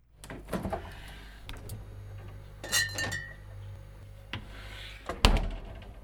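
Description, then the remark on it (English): A fridge door opens and glass beer bottles clink against each other in several bright, ringing knocks, with rustling and a low steady hum underneath and a sharper thud near the end. “I'll go have a look and see what's in the fridge.”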